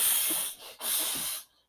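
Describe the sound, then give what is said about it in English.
A person imitates an angry goose with loud, breathy hisses, two long bursts of harsh high-pitched noise with a brief dip between them, ending in a short final puff. “An angry hissing goose.”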